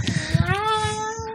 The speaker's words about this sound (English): Who brought that cat?